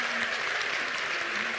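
A church audience claps steadily for the choir, a dense, even wash of applause that holds at a consistent level throughout, with a faint voice murmuring underneath.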